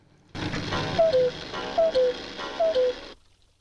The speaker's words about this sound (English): And the camera pans up to the cuckoo clock, just in time.